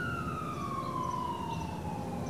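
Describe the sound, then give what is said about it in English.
A lone emergency vehicle siren wails steadily in a town one morning, its pitch sliding slowly downward over a low background rumble. It stays fairly loud throughout, and no one speaks. “That morning, he heard only one siren, so he ignored it.”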